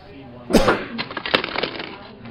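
A sharp, bright crack bursts out, followed by a second or so of brittle clinking and crackling, like ice cubes splitting and rattling against each other, loud.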